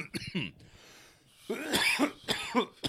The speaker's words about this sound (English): You're going to cough the whole thing, huh? No, just for the first 5 minutes.